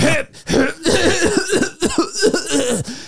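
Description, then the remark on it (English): A voice imitates the string of rough, repeated coughs of a man in an airport security line, several harsh bursts in quick succession, fairly loud, with no other talking in between. “this motherfucker behind me, I swear to God, in the 30 minutes I was in security line, coughed 100 times.”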